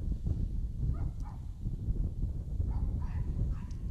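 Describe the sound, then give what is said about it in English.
A dog barks faintly a few times, the short yelps nearly buried under a steady low rumble of background noise. “Even the dogs are amen, and it's awesome.”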